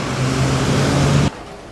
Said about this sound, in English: And this was supposed to be a very intimate conversation, then usually I would take like very much of the background sounds away, so you wouldn't hear the cars in the street.